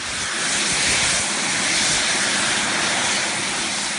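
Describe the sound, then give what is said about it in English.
A loud, steady roar of two small, experimental jet engines strapped to a man's arms, switched on and running at high power, a dense hissing blast that holds nearly constant throughout with no voices. “his arms strapped to a couple of small jet engines, and then he turns them on, and you see the immense power of these engines, which look like they're about to knock him over.”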